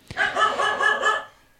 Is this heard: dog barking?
yes